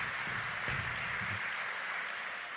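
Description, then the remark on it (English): A church audience at a Sunday service applauds the overturn of Roe v. Wade, a dense, steady wash of many hands clapping that fills the whole clip at an even, moderate level with no distinct individual claps standing out. “And yes, you can clap.”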